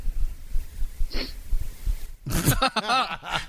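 human body sound, a sniff

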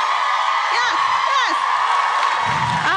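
crowd, audience screaming and whooping

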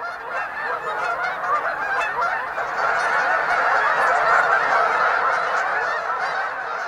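bird, canada geese honking

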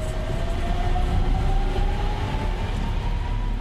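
vehicle, truck engine starting up

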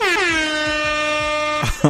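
sound effect, air horn sound effect

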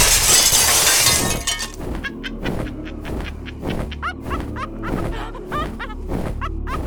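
impact, window glass shattering

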